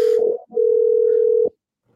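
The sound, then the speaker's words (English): An outgoing phone call's ringing tone: a steady, clear electronic hum that briefly breaks off, then holds for about a second before cutting out into silence. No one speaks. “He's ringing JR.”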